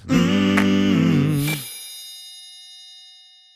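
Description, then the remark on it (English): A telephone ringtone plays a short, stepping melodic phrase of bright, bell-like tones for about a second and a half, then rings out and fades slowly. No one speaks. “It's your telephone.”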